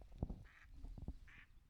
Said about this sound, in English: Ducks!